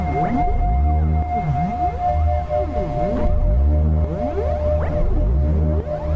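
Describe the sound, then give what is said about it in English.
A recording from inside a pregnant womb: eerie whale-like calls, rising and falling moans sweeping up and down in a steady repeating pattern over a constant low hum and a thin sustained tone, with no voices. “It sounds like whales communicating.”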